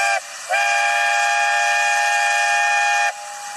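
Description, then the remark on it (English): A loud, sustained train whistle blares in a steady multi-tone chord, cutting out briefly after a short opening blast before sounding again for several seconds, with no talking. “Oh, is it the hype train? Let's see. All aboard the hype train.”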